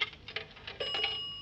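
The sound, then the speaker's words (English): A few quick mechanical clicks, then a steady, high-pitched telephone ring that sounds continuously to the end, moderately loud, with no voices. “Well, I'd better get him on the phone now.”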